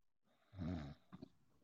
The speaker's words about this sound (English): That was a snore. We heard it.